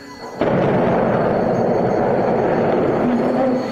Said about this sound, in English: There you have it, folks. That's what a static fire looks like. On October 19, 2020, the Starship SN8 completed its first multi-raptor static fire test.